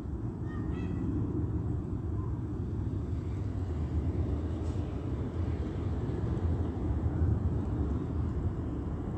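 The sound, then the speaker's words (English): A commercial-size airplane drones overhead above a Metrolink train station and its train tracks, a steady, heavy low rumble that holds at a constant loudness for the whole stretch with no voices over it. “The state is flying over the same Metrolink train station, train tracks right here to my right, and a commercial size airplane.”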